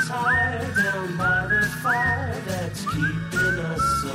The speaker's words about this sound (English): You swear to God that's you whistling?